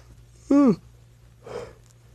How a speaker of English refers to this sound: I believe that's number three. Three yawns. Ugh, already.